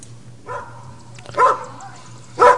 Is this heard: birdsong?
no